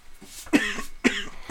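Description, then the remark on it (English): A person coughs two times in quick succession, fairly loud, with harsh, raspy bursts and a brief pause between them, and a third cough starting at the end. “We're doing that when I can't talk because I'm coughing.”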